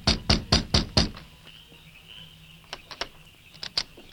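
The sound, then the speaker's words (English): Five loud, rapid, forceful pounding knocks by a man on the wooden back door of a sheriff's office, followed by a quieter stretch with faint background hum and a few scattered lighter taps. “Then he pounded on the door.”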